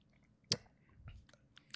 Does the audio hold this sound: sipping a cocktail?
yes